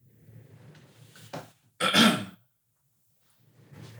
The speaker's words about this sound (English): just move a couple feet away for 2 seconds, cough, and then come back to the microphone